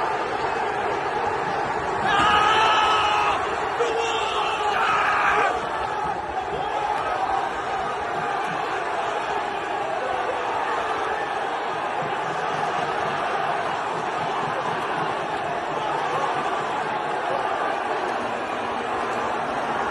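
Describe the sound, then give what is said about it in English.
A football crowd roars in celebration of Newcastle's 87th-minute penalty goal making it 3-0, a dense wall of cheering with louder surges of shouting in the first few seconds, then a steady, sustained din of many voices. “And bang, 3-0 Newcastle. Cue the celebration.”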